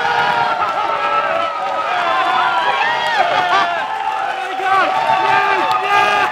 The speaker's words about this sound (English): Everyone is up, leaping over chairs, screaming. Other members of the New York bus appear seemingly out of thin air, slamming into each other.